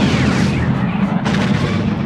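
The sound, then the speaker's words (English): Sci-fi photon torpedoes fire from the starship Enterprise in a loud, dense rumbling roar, and a fresh crackling blast bursts out partway through as an asteroid caught in a vortex dead ahead explodes, with deep low booms throughout. “The torpedoes shot away and shattered the asteroid.”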